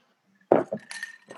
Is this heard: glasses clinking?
yes